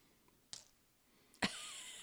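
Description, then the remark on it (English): New dice clatter onto a hard table: a sharp click, then after a short pause a louder impact followed by a brief bright rattle as they tumble and settle. Fairly quiet, with no talking. “New dice. That one's goodish. Let's hope it doesn't betray me again.”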